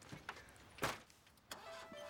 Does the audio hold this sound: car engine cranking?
yes